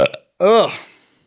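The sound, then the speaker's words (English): A single loud, drawn-out burp with a rough, voiced rattle that trails off over about a second, preceded by a short breathy vocal sound. “God damn, I'm so gassy.”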